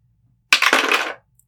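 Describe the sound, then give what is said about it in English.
A short burst of clattering as dice tumble across a hard tabletop. The rattle is fairly loud, with a few quick knocks before it settles within about a second. “All right, so raise some dice to this sucker.”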